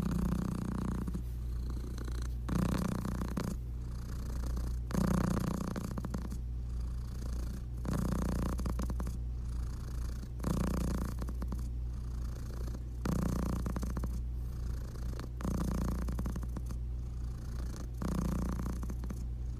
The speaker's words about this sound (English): I also want to say too that like her purr is like so intense and great. And actually, I have a recording of her purr.